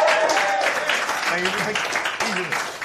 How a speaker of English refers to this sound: We are joined today by Labour MP Jess Phillips. And we have a round of applause, please.